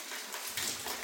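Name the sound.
rain coming down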